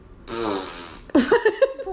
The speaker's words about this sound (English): That's probably accurate, the fart noise. Does that mean you're picking Western Carolina? I'm going to interpret that as a Western Carolina pick.